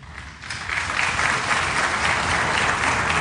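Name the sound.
scattered audience applause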